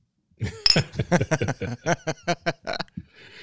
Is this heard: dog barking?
no